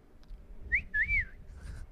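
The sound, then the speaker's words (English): A person whistles two quick notes, a short rising chirp followed by a longer swooping tone, like a wolf whistle, clear over a low, rumbling background. “As if we didn't understand what you were doing, you needed to do the whistle.”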